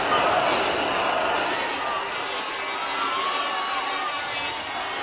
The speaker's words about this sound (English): You almost feel it, JR. This crowd is behind. Listen to this crowd. Chanting in unison.